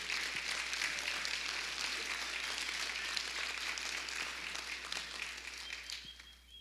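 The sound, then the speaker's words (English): An audience at Lone Grove Assembly of God applauds a new church member, dense overlapping claps forming a bright, even wash of sound that holds for several seconds and begins to thin out at the end. “So can we give her a round of applause?”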